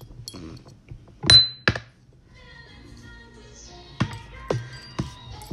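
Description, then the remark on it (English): Glasses clink together in a toast, with a bright ringing tap followed by a few more knocks and clatters, over faint background noise. “Bless up, yo, Trust for Radio, man. Salute. Cheers.”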